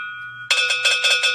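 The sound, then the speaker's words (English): A cowbell rings out in a quick, steady run of about six loud, bright metallic clanks, preceded by a brief faint ringing tone, with no talking. “More cowbell. More cowbell.”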